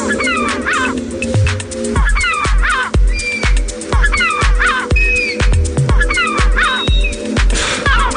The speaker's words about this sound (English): Bye, Gull, Bye, expertly created to safely deter seagulls from getting too close to your food.